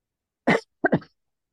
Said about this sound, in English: Okay, that cough got me sidetracked.